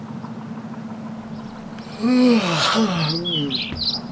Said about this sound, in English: Oh, shut up! What have you got to be chirpy about, eh? Bloody noisy birds at bloody 5:30 in the bloody morning, huh?